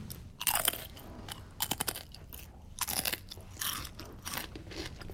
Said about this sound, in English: I found these crisps. Also in a little cupboard in a room downstairs. And the use-by date on them was 4 years ago. But look, you can really hear the crunch.